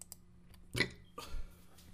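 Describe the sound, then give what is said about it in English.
A short burp comes just after a sharp click, followed by a low guttural rumble; no one speaks, and the rest is quiet room noise. “That was that great old burp.”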